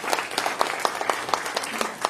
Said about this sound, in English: So let's give all of them a big round of applause.